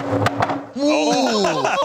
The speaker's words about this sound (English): I want to make sure I get a smash in this fucking thing. I'm going to take a sledgehammer shot at it. I mean, you might shatter the fucking thing right here with a sledgehammer, dude.